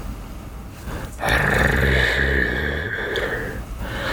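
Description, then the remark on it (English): A deep, rough growling roar swells in suddenly and holds for a few seconds, loud, with a throaty rumbling texture before easing off. “Yeah, it's very ominous growling.”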